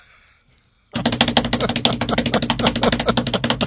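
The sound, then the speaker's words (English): A voice imitates teeth chattering from cold with a rapid, steady stream of loud, rattling clicks and buzzing, starting abruptly after a short quiet moment and continuing without pause. “Imagine those friggin' ugly teeth chattering.”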